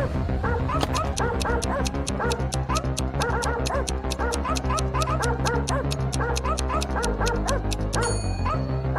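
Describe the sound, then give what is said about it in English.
A robot dog in a lab barks and yips in quick, steady repetition as it runs after a girl, loud, over a driving musical backing with a pulsing beat that runs the whole time. No one speaks. “but it wasn't a regular dog, it was a robot dog. Barking, it ran after Eve.”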